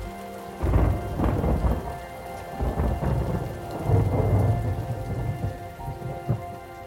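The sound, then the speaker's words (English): A lightning storm with heavy, steady rain and deep rolling thunder that rumbles in several long, loud, powerful swells, with no voices. “I love the feel in my body when the thunder rolls so hard that it shakes inside my body.”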